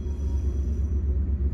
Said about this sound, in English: And not a train. That train was literally sitting there for an hour. And right when we started, it starts up again.